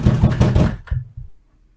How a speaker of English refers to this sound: someone just knocked on my door. Give me a second.